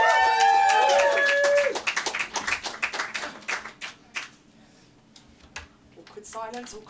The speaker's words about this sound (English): Anyway, massive round of applause and welcome to the stage